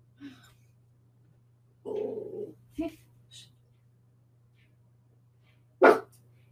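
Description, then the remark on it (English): A dog lets out a few short barks and yips with long quiet gaps between them, over a steady low hum. “Hey, please stop barking, please.”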